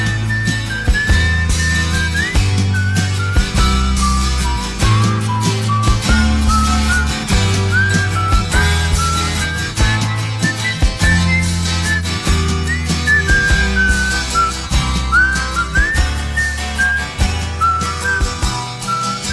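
A person whistles a lilting melody over a full band backing, the whistled notes bright and high, gliding between pitches above a steady bass line and rhythmic accompaniment.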